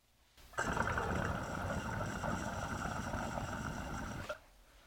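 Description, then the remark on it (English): A Honey Jar Recycler glass water pipe bubbles steadily for about four seconds, a dense, continuous gurgling purr with a bright hiss on top, starting and stopping abruptly with no talking. “So that was the Honey Jar Recycler.”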